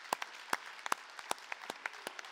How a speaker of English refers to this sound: Let's give a round of applause for what God has done.